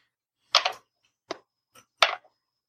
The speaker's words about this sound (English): Well, no, I was rolling the 8-sided dice for both of those. Should I have been rolling 20?